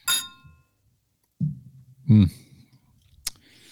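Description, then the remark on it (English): A single bright clink of glasses of maple bacon donut stout beer in a toast rings out at the start and fades quickly, followed by low murmuring voices and a sharp little tap near the end. “So yeah, let's go for it. Cheers it up.”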